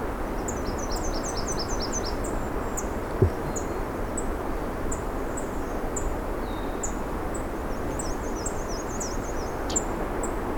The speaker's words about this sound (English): Looks like I have a unhappy swamp sparrow here. Yep, a swamp sparrow.